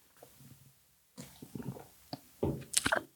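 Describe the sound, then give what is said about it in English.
Someone takes a drink of Bucked Up: a few soft wet sips and gulps with liquid squishing and a small clink, growing louder toward the end, with no talking. “I'm taking a drink of my Bucked Up here.”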